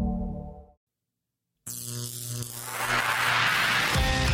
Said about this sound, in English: Stand by. The vacuum tubes are warming up.